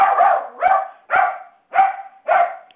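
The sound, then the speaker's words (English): A dog barks five times in a steady rhythm, each bark loud and sharp, with brief silences in between and no talking. “in between Mark's hacking and my dog deciding it needs to have a seizure”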